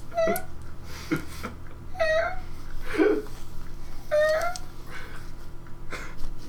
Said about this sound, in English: This is the sound my cat makes, and she's an adult. One of my cats, the one I don't like. The one that doesn't like me.